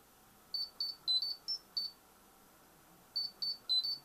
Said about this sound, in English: That is a Power Ranger ringtone. You see the difference? Kim Possible goes did it. Power Ranger goes did it.